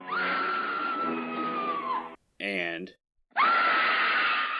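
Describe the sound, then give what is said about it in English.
Faye Ray as Anne Darrow screaming in the film King Kong: a woman screams loudly, two long sustained shrieks falling slightly in pitch, separated by a brief ragged breath and a moment of silence. “Faye Ray as Anne Darrow, cementing her place as one of the OG Scream Queens with lines such as...”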